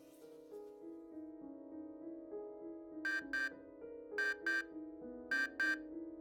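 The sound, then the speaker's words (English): A morning alarm rings with a steady electronic melody, joined partway through by three pairs of sharp, buzzing bursts that repeat at regular intervals. No one speaks. “My alarm drags me out of bed the next morning.”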